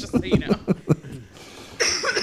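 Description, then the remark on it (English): A quick string of about five sharp coughs in a rhythmic burst, trailing into a brief hiss before another rough, throaty outburst. “Don't need to cough about it, okay?”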